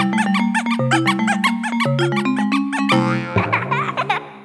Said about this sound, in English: like one of the little baby squeezers, and it would sound like when you squeeze a rubber duck and it goes squeaking, and it makes the same thing but with a rubber ducky noise